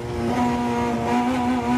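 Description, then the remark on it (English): A loud, steady engine roar recorded by a microphone strapped inside a rally car stripped of its seats and soundproofing, a strong droning hum with layered harmonics that rises slightly in pitch, continuous with no voices. “The noise inside rally cars is deafening.”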